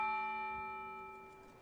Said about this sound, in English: There really was a line of people stretching down the block, waiting for the bell tower to chime 10 a.m., which signaled the reopening of the Ballard Farmers Market.